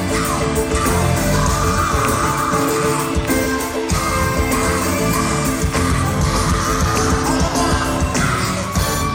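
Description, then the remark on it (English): A singer lets out raw, sustained screams over a loud, dense live band, with crowd noise and yells mixed into the full-volume concert sound throughout, recorded on tour. “I thought that you might appreciate the screams at 3 minutes and 44 seconds.”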